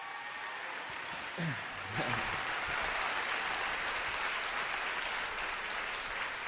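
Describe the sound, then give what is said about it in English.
An audience applauds a campus pastor as he comes up, steady dense clapping that grows fuller after a couple of seconds and holds at a moderate level, with a brief voice or cheer mixed in early on. “Let's give him a hand as he comes up.”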